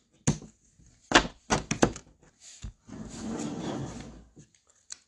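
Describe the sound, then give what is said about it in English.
A deck of cards is tapped against a table several times with sharp knocks, then shuffled in a brisk, rustling riffle lasting about a second, with no talking. “I'm going to shuffle.”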